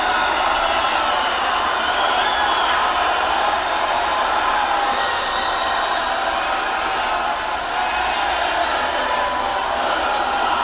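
A large arena crowd chants a goodbye song in unison after Vince is relieved of his duties, a loud, dense roar of many voices that holds steady for about ten seconds with no break.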